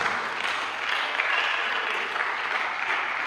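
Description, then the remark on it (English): An audience claps their hands during a sermon to give God praise, in a dense, steady burst of applause that holds at an even, fairly loud level for about three seconds, with no voices standing out. “Oh, the man, if you are loving the preaching, clap your hands and give God praise.”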